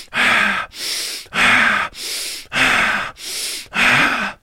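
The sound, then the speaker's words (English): Forceful, rhythmic breathing: seven loud breaths alternating between sharp inhales through the nose and heavy exhales through the mouth, each about half a second, with no talking. The person breathes more vigorously than normal as part of a breathing technique. “You will just breathe in through your nose and out through your mouth.”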